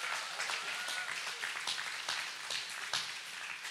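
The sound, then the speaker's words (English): A crowd applauds the dads and fathers in the room steadily, many hands clapping in a dense, crackling wash with scattered sharper claps, holding at an even level throughout without any voices. “And let's give them a round of applause real quick.”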